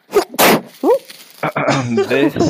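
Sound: sneeze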